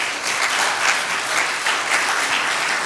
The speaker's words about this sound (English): it's a ministry that is finally bringing a campus house to Oakland University right next door to us. So let's give a round of applause for that.